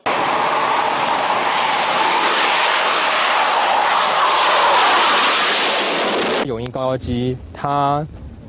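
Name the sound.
fighter jet engine roar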